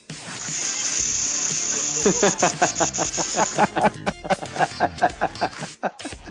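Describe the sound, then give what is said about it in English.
Water runs from a faucet in a steady, bright hiss that holds for several seconds, and a voice talks over the latter half as the flow fades. “Yeah, we need to end every show with the sound of water coming out of a faucet.”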